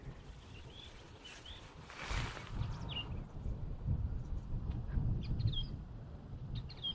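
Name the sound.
song thrush singing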